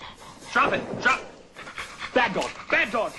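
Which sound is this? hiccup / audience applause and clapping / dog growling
dog growling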